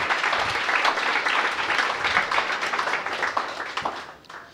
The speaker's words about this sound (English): And clap if you want to clap.